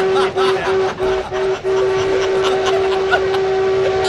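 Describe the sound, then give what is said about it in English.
A locomotive horn blows in one long, steady, loud tone that holds for several seconds, with rumbling train noise and faint chatter underneath. “Yes, we heard the horn.”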